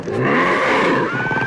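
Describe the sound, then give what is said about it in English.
A loud, sustained growling roar from Dragon, a cartoon-style cat, rough and rumbling with a rising whine near the end, filling the short clip on its own without any talking. “Like, that cat doesn't meow as so much as he roars.”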